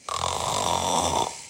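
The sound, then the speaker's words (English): A single loud, rumbling snore from a dog lying under a table, one long raspy inhale lasting just over a second, heard on its own with no talking. “A loud snore came from under the table where Mose was lying.”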